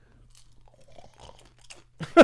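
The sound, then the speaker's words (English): Soft scattered rustles and small clicks give way to a sharp, loud crunch of someone biting into a crisp peanut butter chocolate snack mix, ending in a burst of crackly chewing. “Peanut butter chocolate mix. I mean, what a generous portion here.”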